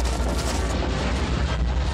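A huge boulder crashing and rolling through an ancient temple passageway, a loud, steady, deep rumbling roar with gritty crackle on top that continues without pause for the whole two seconds, with no voices.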